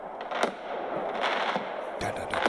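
Repeated sharp bangs and crackling pops of fireworks and firecrackers going off outdoors, bursting irregularly over a dense rumbling wash of more explosions.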